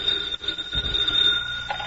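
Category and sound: signal or alarm, telephone ringing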